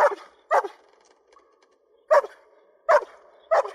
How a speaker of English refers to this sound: Now, the most convincing fear acting I saw in this movie was done by a dog, and it impressed me, and I recorded some of it because this is fear barking, and it really got me.